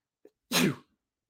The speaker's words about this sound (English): Okay, only one sneeze. I tried to get my hand on the button and I completely whiffed. So now a sneeze is being left in the show. I apologize.